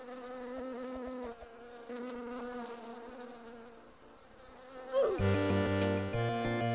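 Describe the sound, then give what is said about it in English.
A swarm of bees attacks the player in a video game while protecting their beehive, a dense, layered buzz that wavers in pitch, then swells louder and harsher near the end as the hum thickens into a strong drone. “Oh, now the bees are basically attacking me, so I went after Let the beehive.”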